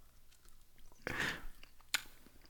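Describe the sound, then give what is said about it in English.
Chewing of food with the mouth closed, with one louder crunchy burst, a sharp click a moment later, and soft mouth sounds and small ticks around them, otherwise quiet. “Now you're chewing with your mouth closed.”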